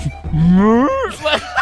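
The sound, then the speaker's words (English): Someone imitates an elephant trumpeting with their voice: one loud, rising brassy call held for about a second, followed by a few short breathy bursts. “And now, over to your right, you'll see the elephants.”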